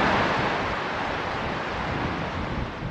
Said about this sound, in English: I'll tell you what, it is windy out here and pretty cold. It's about 30 degrees outside. I would not like to fall into that river. It looks like it's raging pretty hard.